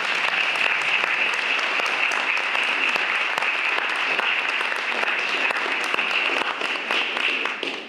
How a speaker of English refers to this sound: So y'all clap it up on that, that's great.